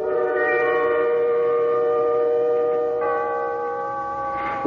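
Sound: clock chiming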